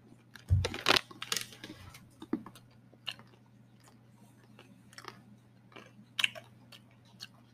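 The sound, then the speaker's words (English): Crunchy chewing of a small bite of dry snack mix, with a loud burst of crunches at the start followed by scattered softer crackles and bites over a faint steady hum. “Trying to have a little bit of each in this small bite, but some of each.”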